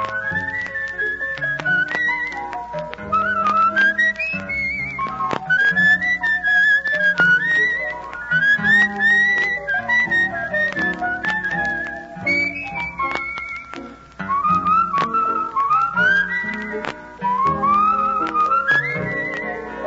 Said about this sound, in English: That's all for now, friends. It's time to be whistling along.